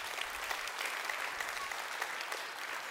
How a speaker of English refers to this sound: Will you give God a hand clap of praise?